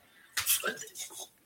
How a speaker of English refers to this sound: And you want to make sure you are filtering your water, just like I'm drinking right here.